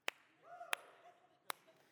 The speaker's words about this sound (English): Golf claps.